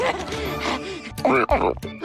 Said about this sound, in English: Oh my gosh, a pig!